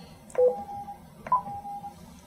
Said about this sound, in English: You push and hold the default. It wants to make sure you really want to do that. Okay. Yeah, here's the confirmation beep there.